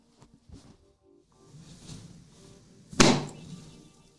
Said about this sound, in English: So that was me beating my chest.